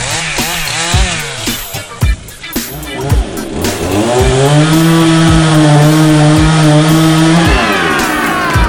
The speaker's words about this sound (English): Wait, is that a chainsaw? But I don't have a permit for that.